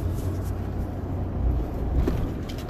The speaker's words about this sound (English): We got cars coming and going, but along the highway, those are my cyclists.